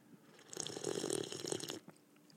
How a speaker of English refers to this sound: He told me years ago that is a professional broadcasting maneuver, is to sip your coffee so those that are listening can understand and get the full visual through the audio auditory. They can hear it and they can get the visual of me sipping a good